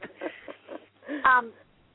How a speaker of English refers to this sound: She had breathing issues. Because she's making, I don't know if you've noticed, but I've had a little bit of trouble breathing yes. in the past few minutes. She has breathing issues.